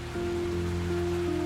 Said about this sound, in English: The sky is overcast with thick clouds and very dark skies you can see. It is continuously raining and it can last for several days. And this is happening over a large region of the country.